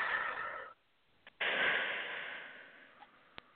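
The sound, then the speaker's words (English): A breathy inhale is followed by a brief pause, then a long, slow exhale that gradually fades, with no speech. “Exhaling all that goodness.”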